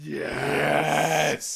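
A person imitates Darth Vader's respirator breathing: one long, raspy, droning exhale held for over a second, then a brief sharp hiss as air is drawn back in. Fairly loud.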